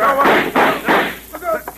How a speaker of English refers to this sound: What a battle, old man. Hotfoot and Gimmick out in two punches. What a battle.